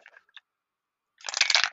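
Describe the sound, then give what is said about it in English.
Dice rolling through a Nerd Circus dice tower: a few light clicks, a pause, then a dense burst of rapid, bright clattering as the dice tumble down and settle on a 3. No one speaks. “You're so lucky that I happen to have my Nerd Circus dice tower at the ready.”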